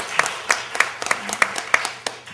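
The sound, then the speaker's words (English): Audience applause: a patter of crisp, sharp hand claps, with a few louder claps landing in a fairly steady beat over the softer clapping throughout. “I want to give Yancey a round of applause.”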